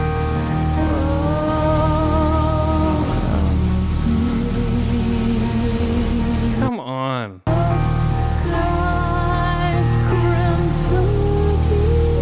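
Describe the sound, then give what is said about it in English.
Droning, noisy music from a song with sustained tones sits over a steady hiss of rain throughout, briefly cutting out for a moment near the middle before resuming at full loudness. “I know, it's just noise with rain in the background.”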